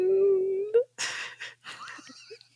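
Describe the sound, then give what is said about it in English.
A creepy cartoon whimper from a show's end credits: a thin, steady whine held for nearly a second, rising at the end, then several breathy, raspy sobbing bursts with no talking. “Was that a whimper? It was.”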